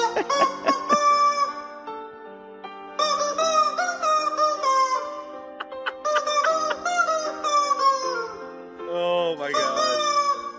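Loud, close rooster crows stitched into a sung melody, rising and falling in four long phrases with short breaks between them. No one talks.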